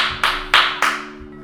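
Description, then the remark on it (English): Three sharp hand claps in an even rhythm, close and fairly loud, each with a bright crack and brief ring, with no voices. “That's something to clap about”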